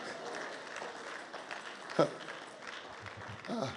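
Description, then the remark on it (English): A church audience claps in a steady, dense patter for several seconds, giving a big clap for praying to Jesus, with crowd voices mixed in and a brief louder burst partway through. “Come on, give a big clap for pray to Jesus.”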